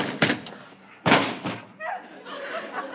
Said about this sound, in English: I didn't hit him. He ran into the door.